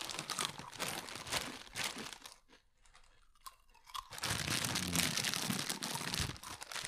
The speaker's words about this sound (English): Welcome back, everybody, to this week's Down the Wire, presented by Fritos, the worst podcasting snack to get on planet Earth. Nothing your viewers want more to hear than a nice, dry, crisp just crunch.